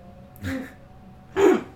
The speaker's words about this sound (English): I'm going to start coughing.